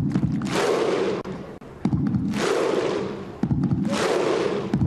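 A huge stadium crowd performs the Viking thunder clap, also called the skull clap: three massive unison clap-and-shout bursts about a second and a half apart, each a loud roaring boom that trails off before the next.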